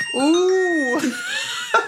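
A loud electronic alert tone from a watch, a Find My iPhone locating ping, two bright, gliding chime-like sweeps that arc up and down in pitch, followed by a brief final blip, with no talking.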